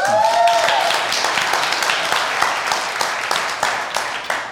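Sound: audience clapping hands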